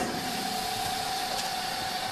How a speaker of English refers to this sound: Over to the chamber vac. To the chamber. I think everybody keeps their chamber vacuum sealer in their entry closet. I'll close the lid. It's going to start doing its thing. It takes about a minute. Here we go.